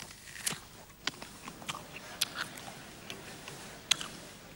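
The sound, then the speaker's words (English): Someone bites into a piece of fruit, followed by a string of crisp, irregular crunching clicks from chewing, fairly quiet, with no talking. “See this beautiful fruit. It looks amazing. And I take a bite.”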